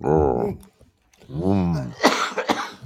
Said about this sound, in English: Wow. You see, you're sneezing and coughing and hacking